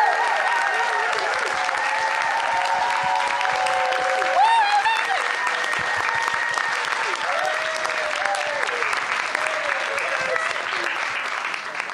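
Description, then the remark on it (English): Sustained, loud applause from an audience at a storytelling event, welcoming the first storyteller to the stage: a dense steady clatter of clapping with voices cheering and whooping over it. “It's really hard to be the first storyteller, so let's give a very warm round of applause all the way till she's standing here.”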